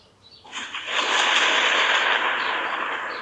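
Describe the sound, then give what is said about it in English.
A loud, sustained crack-and-roll of thunder swells up within half a second, then holds as a broad, hissing roar for nearly three seconds, with no voices over it. “Or is that some thunder? Thunder.”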